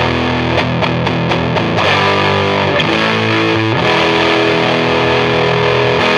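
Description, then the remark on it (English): A heavily distorted electric guitar played through a JHS fuzz pedal with thick fuzzy overdrive, a few sharp chord stabs leading into sustained, saturated chords that ring loud and wide, with no voices. “Sounds like a stadium, like a distorted amp in a stadium, which I think is really cool.”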